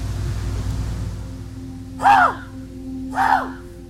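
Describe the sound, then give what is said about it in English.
Outdoors on a crisp morning in Thompson, a person imitates a raven to call ravens in, making two hoarse, croaking calls about a second apart, fairly loud over a low steady background hum. “I'm going to try and call in a raven or two, if I can.”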